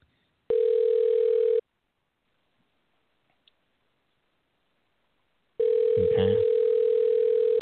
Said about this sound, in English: All right. It's dialing now.